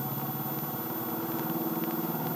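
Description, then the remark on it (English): A car engine roars steadily at speed, a continuous loud mid-pitched drone with a throbbing, rumbling texture and no voices. “Mario drove faster and faster. He was going home.”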